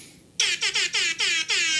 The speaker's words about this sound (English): Whoa. All right. So this is we probably got maybe three more episodes with our rap air horn, and then we're going to find something different.